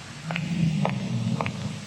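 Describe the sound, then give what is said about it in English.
In a 1968 Nixon television ad, a woman's footsteps walking down a street at night: three or four crisp clicks at a steady walking pace over a low, constant hum, with no voices. “And Nixon ran a series of television ads that year where, for instance, he showed a middle-class white woman walking down the street at night, and then you heard footsteps.”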